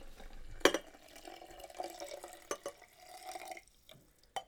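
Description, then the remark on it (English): Hot water, no longer quite boiling, is poured from a jug onto coffee, a steady trickling stream with a few sharp clinks and drips along the way and no voices. “Right, so we need to pour on the boiling water, which I've got in a jug here. So let's put it on.”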